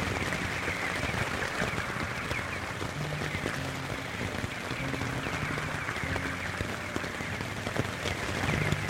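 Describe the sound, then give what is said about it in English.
Steady rain falls continuously, a dense patter of raindrops hitting a surface with an even hiss and no letup, moderately loud, with no voices. “I think if I were a bat and I was hungry, I feel like the raindrops might jar me quite a bit.”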